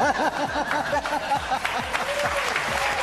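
Steady applause from an audience in a played clip, a dense crackling wash of clapping that runs throughout, with voices rising and falling on top of it.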